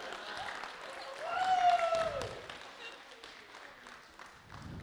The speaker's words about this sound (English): Come on, let's give it up for them. Let's clap, come on. Clap, come on.